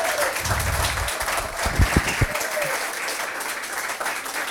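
A room full of people applauds a printmaker after his talk about his prints. The steady, dense clapping fills the space for several seconds, with a few louder claps and faint voices mixed in.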